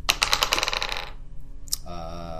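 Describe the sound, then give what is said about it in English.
Green dice clatter across a hard surface in a quick burst of bright, rattling clicks for about a second, rolled for an attack at disadvantage, then settle on 11, followed by a short click and a faint sustained hum. “I am also going to need it at disadvantage for trying to grab it. Roll.”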